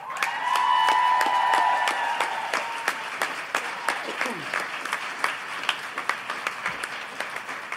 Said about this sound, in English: So give a massive Calgary round of applause for our guest tonight